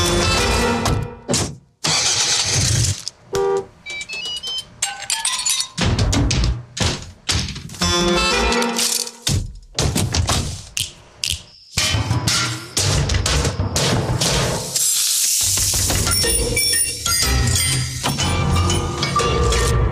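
RV horns and ringing bike bells, along with grills and more, play a rhythmic tune in short, punchy bursts with brief pauses, joined by clanks and an engine rumble, at a meetup of RVers in Flaming Gorge, Wyoming, for a commercial. Loud throughout, with no talking.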